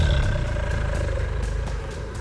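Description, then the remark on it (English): A voice imitates the creepy growl of a blue dragon as it tries to bite a character: a low, rough, rumbling snarl held steadily for about two seconds, loud and gravelly with no words. “He lets out this really creepy growl.”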